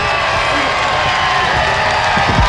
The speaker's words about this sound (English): Fake cheering is hilarious.